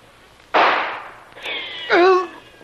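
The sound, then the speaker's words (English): A single loud rifle shot, gunfire from guards at a beach, cracks out and rings away, followed by a sustained tone and a brief shouted cry from a voice. “a surprise is waiting for them in the shape of a volley of gunfire from the guards.”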